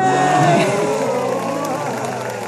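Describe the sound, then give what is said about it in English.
A studio audience applauds and cheers loudly to welcome a guest, with high whoops and shouts rising over a dense wash of clapping that holds steady and then eases slightly toward the end. “Studio applause, studio”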